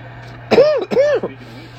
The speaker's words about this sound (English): I've got a terrible cough that I cannot ask ChatGPT what's good to relieve my cough. ChatGPT says honey and rest and to shut the hell up.